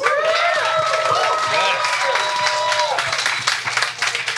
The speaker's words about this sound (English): So here we are. Here we go. So a big round of applause for Lynn Alden.